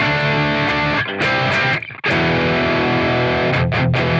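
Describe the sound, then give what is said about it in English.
A heavily distorted electric guitar roars through an Engel Savage 120 tube amp with all knobs at noon, chugging chords with a brief choked gap around two seconds, then ringing out loud and saturated with no voices. “So for reference, that's what a real distortion sounds like. I didn't touch anything. This is just all knobs at noon on the Engel Savage 120.”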